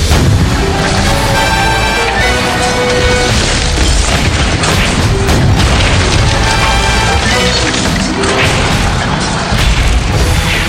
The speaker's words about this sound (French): Au-dessus de leur tête, le feu des canons faisait des ravages, perforant les tentes et brisant les totems.